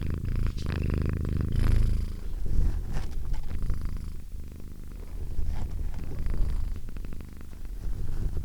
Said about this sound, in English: contributing with Kachu's purrs. Let's see if I can capture them.